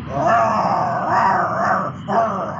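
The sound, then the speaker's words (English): A pack of angry dogs growl and snarl together in a loud, continuous rumble, their overlapping growls swelling and briefly dipping before surging again, aggressive with no talking. “Oh, sorry, there was a traffic jam and a pack of angry dogs there.”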